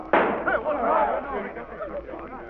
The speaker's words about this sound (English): I'll begin with Sheriff Brazos, the man who just shot me.